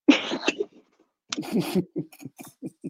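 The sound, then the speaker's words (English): Two sharp sneezes burst out about a second apart, loud and breathy, followed by a few short murmured words from other people. “God bless you.”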